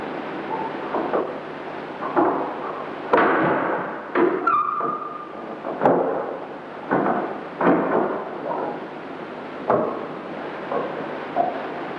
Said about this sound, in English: It was during this period the ghost decided to make its presence known. And to our utter astonishment, we recorded the sound of it opening a door, but a door which doesn't exist.